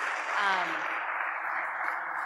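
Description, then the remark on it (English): Audience applause for two speakers after a morning session, a dense, steady wash of clapping that holds at an even loudness for about two seconds, with a brief voice murmuring underneath near the start. “Can we please give a round of applause to these two gentlemen?”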